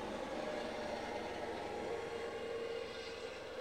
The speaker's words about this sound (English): Whoa, helicopter right. coming through.